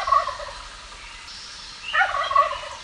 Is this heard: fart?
no